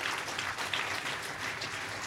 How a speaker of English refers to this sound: Thank you so much. A big round of applause. Very good.